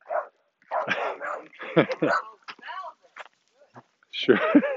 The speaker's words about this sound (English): oh, shushing dog. Shush, doggy.